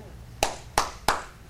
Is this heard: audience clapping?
yes